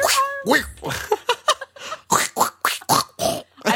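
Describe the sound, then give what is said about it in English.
A person imitates a pig, making a rapid string of close, throaty grunts and phlegmy throat-clearing snorts that come in short, choppy bursts. “Oh my god, it sounds like a pig and I'm clearing my throat as a pig.”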